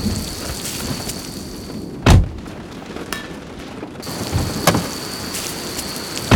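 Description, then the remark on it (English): Steady heavy rain hisses throughout a thunderstorm in the middle of the night at an abandoned psychiatric hospital, broken by two loud thunder cracks with deep rumbling booms, one early and one later. No voices. “Who the hell is gonna break into an abandoned psychiatric hospital in the middle of the night? During a thunderstorm?”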